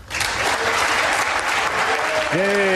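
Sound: audience applause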